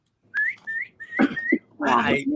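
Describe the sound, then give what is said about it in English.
A pet parrot named Basquiat gives three short, rising whistles in quick succession, clear and fairly high-pitched, followed by a rougher burst of sound and a brief voice. “No, a parrot. Oh, a parrot.”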